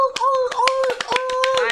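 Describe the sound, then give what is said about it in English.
Rapid, evenly spaced seal-style hand claps, about ten in under two seconds, fairly loud, over a steady droning vocal tone that could be someone mimicking a seal. “Are we seal clapping, everybody?”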